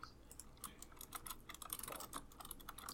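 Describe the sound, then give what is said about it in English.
Rapid clicky keystrokes on a mechanical keyboard with blue switches, a fast irregular stream of sharp, bright clacks with no talking. “Oh, those are some pretty good those sounds. Are the bluest I've ever heard.”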